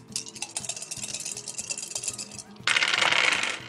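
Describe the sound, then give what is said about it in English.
Dice are rolled during a game, with the wild die coming up 1 and a total of 21. A steady run of small, hard clicks and rattles gives way near the end to a sudden louder, denser clatter as they tumble and settle. “I rolled a 1 on the wild die, and then I got 21.”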